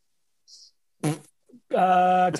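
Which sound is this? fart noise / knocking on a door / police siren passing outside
fart noise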